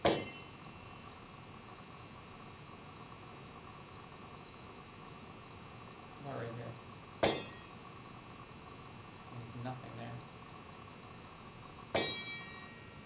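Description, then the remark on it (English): A hand-held metal rod is banged three times, each sharp clang ringing out and fading, with quieter rattling sounds in between over a steady background hiss. “Let's see if it sounds any different if I hold it up here and bang it.”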